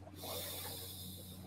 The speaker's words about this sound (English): In through the nose, out through the mouth.